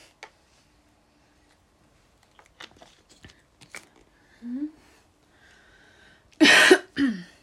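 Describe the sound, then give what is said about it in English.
A quiet stretch with faint clicks and a short throaty grunt, then a loud, harsh cough followed by a second, smaller rasping cough near the end, from a person who is still sick. “You heard me coughing.”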